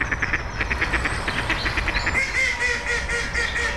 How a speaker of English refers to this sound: And in this area, I think to say they're up and thriving is absolutely true, because they're all they're out here, they're squabbling, all the ducks are squabbling, they're looking at us maybe for some bread or food